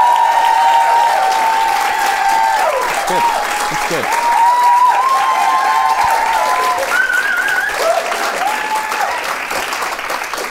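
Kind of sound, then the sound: crowd, audience cheering and applause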